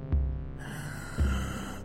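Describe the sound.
A voice imitates a motionless, staring creature's wheezing, raspy breathing: two heavy breaths about a second apart, each starting with a low huff and trailing into a hoarse, airy rasp, fairly quiet.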